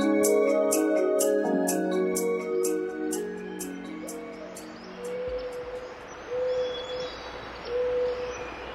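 A fading musical passage gives way to quiet redwood forest ambience in California, where an owl gives a few soft, evenly spaced hoots, with faint birdsong in the background.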